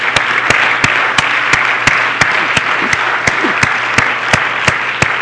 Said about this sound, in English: And everybody said, in Jesus' name, let's give the Lord a good hand clap of praise today.